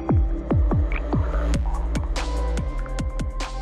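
Frogs croak just after rain, heard through the open window of a tiny cabin, in a steady, rapid series of deep, downward-swooping calls, about two or three per second, over a low continuous hum, with no one speaking.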